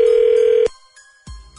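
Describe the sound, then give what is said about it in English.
A telephone rings on an outgoing call placed by the Z Morning Zoo radio show on Z104: a single loud, steady ringback tone that cuts off, then a quiet pause and a soft low thump like the line being picked up. “What we will do is we will call her up.”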